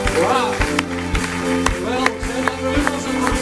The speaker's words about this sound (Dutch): laten we God een groot applaus geven. Let's give God a hand.